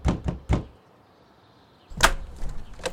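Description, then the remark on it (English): Three quick, firm knocks on the front door of a house, then a second of quiet before a louder thud and clattering as the door is handled and opened. “All right, well, let's head over to the front of the house and, I don't know, just knock on the door here.”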